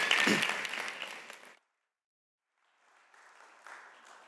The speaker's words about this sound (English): Let's give Pete a round of applause as well.